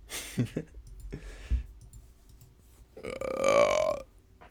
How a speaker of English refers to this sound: Oh, sorry. I burped last episode like twice in mic, and I was like, oh my god. It's cool. It keeps it natural. It keeps it authentic.